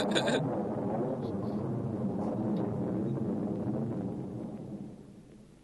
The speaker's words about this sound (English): What's the lightning? There's some thunder and lightning.